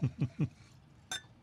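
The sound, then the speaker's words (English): Three quick, low glugs of a heavy pour of liquid from a bottle, then a short pause and a single bright glass clink ringing briefly. No one speaks. “I poured heavy, I'm sorry.”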